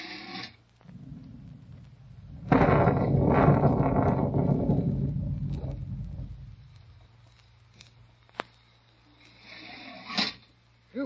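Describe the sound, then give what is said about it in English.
A sudden loud crack of thunder breaks out and rumbles heavily for several seconds before slowly fading, over a steady low wash of storm noise and rain. “Huh, kind of looks like a storm coming up, don't it?”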